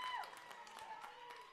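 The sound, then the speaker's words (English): A grandstand crowd at a game at Southern Union, under the lights, cheers and claps steadily after a hit by Kelsey J in the bottom of the seventh. A dense wash of voices is dotted with sharp handclaps and a few whistles, at a fairly low level. “And the excitement's in the grandstands. This crowd has become electric off of that hit by Kelsey J.”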